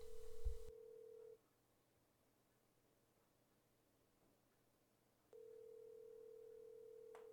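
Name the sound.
telephone dialing and ringing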